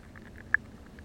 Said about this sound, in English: These are limpets and periwinkles. Small little animals adhere to the side of the rocks. And this is a recording of them conversing.